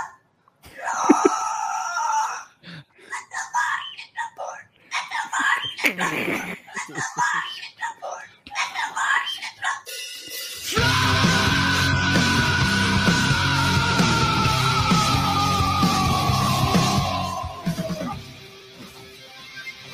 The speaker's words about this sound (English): I just bought a cockatoo from a guy on Craigslist, and it keeps on making these noises